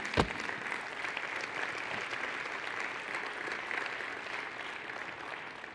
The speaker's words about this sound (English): Would you stand? Let's give the Lord a clap offering together. Give a good clap offering. There you go.